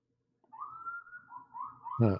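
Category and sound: vehicle, sirens outside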